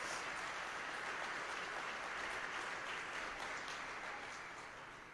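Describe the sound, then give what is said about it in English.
A crowd gives one more round of applause in celebration of people who shared their testimonies, a dense, continuous wash of clapping that holds strong for several seconds, then starts to thin and fade slightly toward the end. “Can we just give them all, just by a celebration, one more round of applause?”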